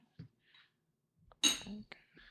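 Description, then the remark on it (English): Tea is poured into a cup in one short, bright splashing burst, with a few soft clinks of china and faint murmurs around it. “I just want to pour some more tea, actually.”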